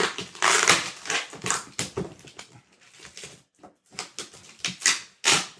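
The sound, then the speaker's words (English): Loud ripping and crinkling as a Nomadic package is torn open by hand for the first time, without a knife or tool, coming in irregular bursts with brief pauses between tugs, and no voices. “And I'm opening this up right now. First time.”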